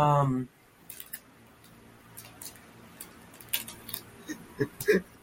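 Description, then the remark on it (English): A person chews and bites on a piece of paper, a series of irregular crinkly crunches and soft ticks that grow denser toward the end, after a brief voiced sound at the start. “Nothing really I can like bite. Make like a big. Oh, here's paper.”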